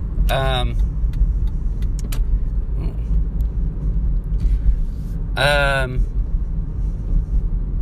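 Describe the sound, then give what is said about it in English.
Steady road traffic rumbles throughout at the scene of a car accident, broken by two short, piercing tonal blasts near the start and again later, with faint murmured voices in the background. “So, and now there's a car accident.”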